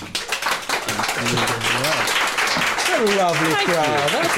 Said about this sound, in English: Please give Donal a huge hand to welcome him.